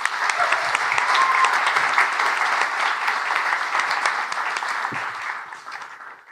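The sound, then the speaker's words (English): A crowd applauds steadily with dense, rapid clapping and a few scattered cheers, holding strong for several seconds before tapering off slightly at the end. No one speaks over it. “Please make some noise”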